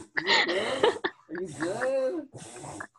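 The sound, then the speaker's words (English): A dog, Sophie, snorts and wheezes while reverse sneezing, in three raspy, honking bursts, each a wet, strained breath with a whistling edge, separated by brief pauses. “Is your dog okay?”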